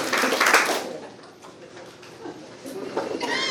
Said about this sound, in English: If you can hear the sound of my voice, clap three times.